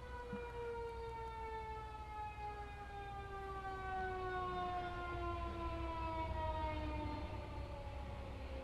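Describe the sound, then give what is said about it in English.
A loud ambulance siren sweeps past, its steady tone gliding lower in pitch as it goes by, over a constant low traffic rumble with no one speaking. “That was some ambulance ASMR.”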